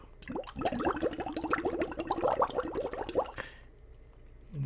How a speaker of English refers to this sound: If you blow into water, you can carbonate it, or at least that's what I believe.